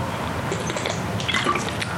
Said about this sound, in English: I'm gonna take a little quick sip, hold up.